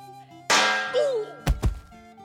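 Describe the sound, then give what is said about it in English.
A metal pan is swung to hit a man, striking with a loud clang that rings out briefly, followed a second later by two quick, heavy thunks in rapid succession. No one speaks. “Quick, hit my dad with it before he puts his butt on me again.”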